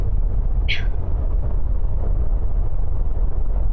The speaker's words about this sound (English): The storm's hit, and I think we're going through the worst of it. The howling outside. It almost sounds like some sort of animal.